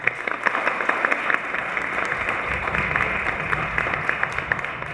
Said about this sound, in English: Please give a special round of applause for our community guest star